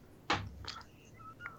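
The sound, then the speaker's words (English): A video game goose gives a few short, nasal honks after a dull thump, the calls coming in brief bursts over about a second with no one talking. “That sounds like an asshole goose. Some kind of like a dickhead of a goose.”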